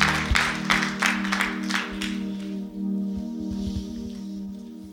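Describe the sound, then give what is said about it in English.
A church audience claps their hands in Jesus' name after a prayer, a loud burst of applause for a couple of seconds, then it thins out over a steady sustained keyboard or organ tone. “Clap your hands in Jesus' name.”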